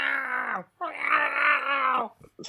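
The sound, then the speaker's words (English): A person vocally imitates a tiger cub's whine: two sustained, nasal, wavering cries, the second longer, fairly loud, ending with a few short breathy sounds. “Yeah, because they kind of whine, don't they? I'm sure we've seen in the show, they're like kind of”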